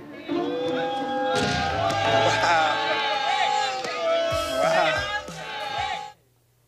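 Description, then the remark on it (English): A loud, dense basketball crowd jeers and shouts continuously at a free throw shooter, with wavering whoops and bleating-like heckles rising over the roar, lasting about six seconds before cutting off abruptly. “Remember, this guy made 9 free throws earlier, but now it looks like the crowd's negative reinforcement is throwing him off his game.”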